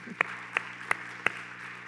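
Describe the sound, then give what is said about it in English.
Four sharp hand claps in an even, steady rhythm, each crisp and bright, over a low constant background hum with no talking. “That's a clap.”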